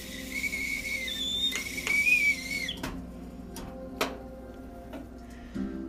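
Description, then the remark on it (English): A stovetop teapot whistles with a thin, wavering high tone for a couple of seconds as water boils for Nescafe coffee, then cuts off, leaving a low steady hum and a few sharp clicks and taps. “So if you're not up, wake up, buttercups, and come join me for a nice cup of delicious Nescafe as my teapot just starts to brew.”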